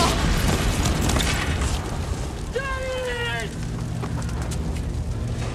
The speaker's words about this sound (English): But the store suddenly explodes in flames.